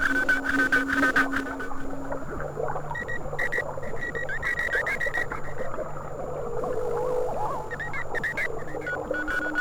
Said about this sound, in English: The rich fluty whistle.